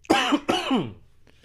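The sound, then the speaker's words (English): Two loud, harsh coughs in quick succession, raspy and strained with a voiced, choking edge, the second one trailing off into a wheezy fade, from someone who swallowed spit that went into the lungs. “Nah, I just swallowed some spit. It went into my lungs.”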